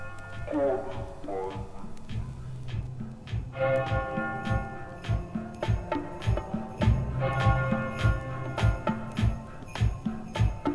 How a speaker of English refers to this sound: The bells in the background of this track is probably the closest I'll ever come to playing any Christmas music on this show.